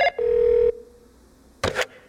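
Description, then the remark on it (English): A brief electronic tone gives way to a single steady telephone ring tone lasting about half a second, followed by quiet and then a short burst of noise as the line connects. “Before we get into this marriage, I actually have someone that I'm going to give a phone call to real quick.”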